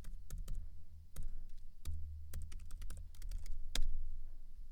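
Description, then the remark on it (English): Irregular bursts of typing on a computer keyboard, sharp clicky keystrokes in uneven clusters, over a low steady hum; no one speaks. “So if I didn't make my point and then pause for the very dramatic typing pause”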